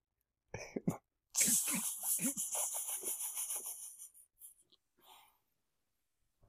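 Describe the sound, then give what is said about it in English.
A voice imitates a truffle pig's snorting: a couple of short snorts, then a long run of rapid, raspy, nasal snuffling pulses that taper into a few faint sniffs. “So I don't want to put off every single person in the world doing these fucking ridiculous truffle pig snort noises.”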